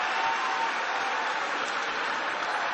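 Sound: rally crowd cheering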